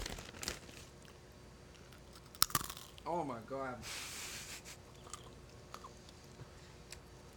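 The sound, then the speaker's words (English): Crunchy chewing close to a microphone, with crackling bites and a sharp snap as candy is crushed between teeth. A short exclamation cuts in partway through, then chewing noises continue quietly. “Do you want to hear it without hearing yourself chew?”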